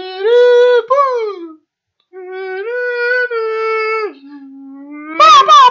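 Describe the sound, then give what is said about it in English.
An eagle calling: two long, wailing, mid-pitched cries with a short pause between them, the second trailing off into a lower drawn-out tone before a brief harsh burst at the end. “What was that? The eagle in the background.”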